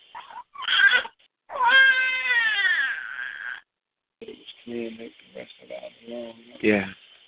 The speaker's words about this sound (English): That was the little cat that was right here.